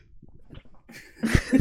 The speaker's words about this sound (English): Now that I sneezed, everybody knows I was sneezing.